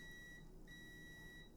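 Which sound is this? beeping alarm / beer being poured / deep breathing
beeping alarm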